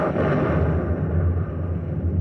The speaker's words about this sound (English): You must have heard that explosion. Directly ahead of us, a great blob of light has just bleached and reddened the sky, tearing the night into shreds. It was followed by that blast, more sullen and deafening than any we have so far heard.